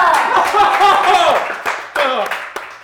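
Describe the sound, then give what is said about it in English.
Hand clapping mixed with excited, overlapping voices, ending in a few separate, sharp claps as the cheering dies down. “You don't have to clap.”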